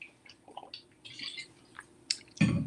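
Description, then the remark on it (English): Quiet slurps and wet mouth sounds of someone taking a sip of water, with small gulps, ending in a louder swallow or thud as the drink is set down. “Excuse me, just sip water.”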